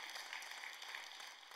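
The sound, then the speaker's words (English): A soft, polite golf clap: a faint, light patter of hands from a small crowd, steady for a moment and then tapering, with no voices. “Now that was a golf clap.”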